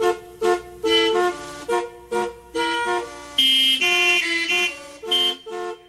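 A melody played on a car horn organ, blaring horn tones of different pitches sounding in a steady tune of short and sustained notes, loud and close, with no voices.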